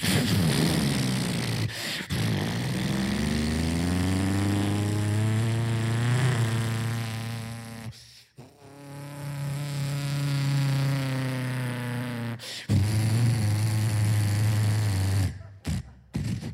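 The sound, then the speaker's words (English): A voice imitates a small single-engine airplane, a loud, sustained droning buzz that rises and falls in pitch over several long breaths, with brief pauses between them. “A little airplane, single engine.”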